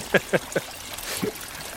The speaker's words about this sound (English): And the sound of thick brown water slapping on the muddy floor next to them.